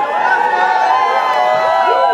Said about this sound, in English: For a second straight night, a weekend beach crowd gathered at English Bay after dark, soon beginning to resemble another outdoor party.